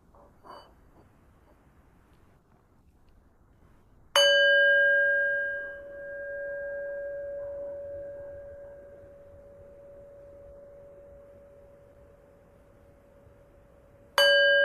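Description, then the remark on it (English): A meditation bell is struck once and rings out with a long, clear, sustained tone that slowly fades over about ten seconds before it is struck again right at the end; the first of three bell sounds opening an evening sitting meditation. “could we enjoy three sounds of the bell, please?”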